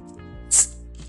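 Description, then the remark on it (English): A can of tropical orange flavored sparkling water cracks open with a single sharp, bright hiss-pop, brief, against a low steady background hum with no talking. “Sparkling water on deck as always.”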